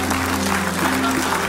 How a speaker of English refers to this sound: People are clapping going, oh, no.